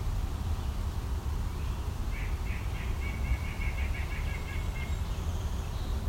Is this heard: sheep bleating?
no